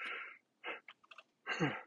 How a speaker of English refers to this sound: The yawns, newborn dad stuff. A lot of coffee and yawning.